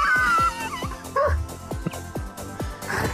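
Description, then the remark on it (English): A big dog barks repeatedly in a steady run of deep, loud woofs, about seven or eight barks over a few seconds with some whiny yips mixed in. “And you know how you would maybe try and scare him? Mad Dog's 50 kilos.”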